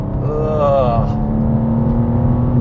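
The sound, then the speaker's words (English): A BMW M2 sports car engine accelerates with a loud, continuous low roar. A rising whine climbs briefly near the start, then the engine settles into a steady, throaty drone. “TestDrive: BMW M2”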